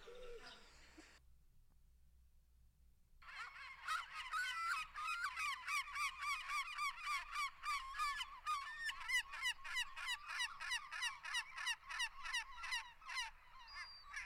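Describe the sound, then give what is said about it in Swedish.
A common gull calls loudly, a long run of rapid, harsh yelping cries that build into a steady rhythmic chatter after a brief quiet start, with no talking. “Fiskmås. Jajamän, det där är en mås.”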